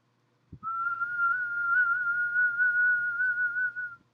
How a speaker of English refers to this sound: is that your whistle, like, if you can whistle, your whistle changes. What? Because my whistle didn't used to have a vibrato when I was a kid.